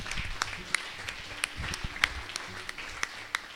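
An audience gives God Almighty a hand clap, sharp crisp claps landing in a steady, fairly even rhythm over a low background murmur of scattered applause, with no speaking.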